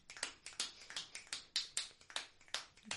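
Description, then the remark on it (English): Rapid finger snaps and hand claps in a quick, uneven rolling rhythm that mimics galloping horse hooves, played fairly soft with no talking. “Doing the snap clap. Horse racing.”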